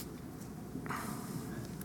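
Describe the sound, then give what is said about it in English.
Soft, scattered rustling of many Bible pages being turned at once by an audience turning to the book of Galatians, a diffuse papery swish that swells partway through and continues without talking. “I want to hear some pages turn.”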